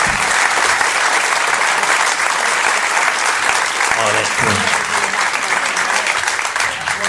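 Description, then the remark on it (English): An audience applauds steadily and loudly for about seven seconds, a dense wash of clapping that stays even throughout, with faint voices mixed in beneath. “Give it a round of applause to when Trevor.”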